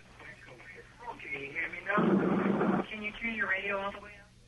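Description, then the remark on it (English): Tinny, echoey audio from a caller's radio playing too loud, heard over a phone line, voices on the broadcast overlapping with a brief louder surge of sound in the middle. “You know, I can't hear you because your radio is too loud and it's echoing.”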